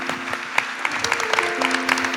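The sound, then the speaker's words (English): An audience claps steadily, a dense patter of many overlapping hand claps with scattered sharper claps standing out, at moderate loudness with no talk over it. “Don't stop clapping if you've been blessed by those words.”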